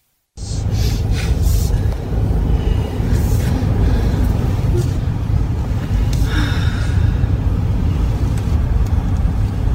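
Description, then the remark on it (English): Steady engine and road rumble from inside a moving car following directly behind a hearse, a black Cadillac, along a lane winding through campus, a constant low drone with faint hiss and occasional soft rustles above it, no voices. “recorded the video from the inside of the Wyant's car, which followed directly behind the hearse.”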